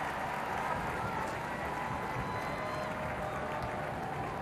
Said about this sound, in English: The armed forces giving a round of applause.